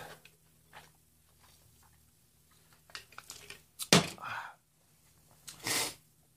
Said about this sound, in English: I don't want to lose my composure, so I'm going to have a sip of this.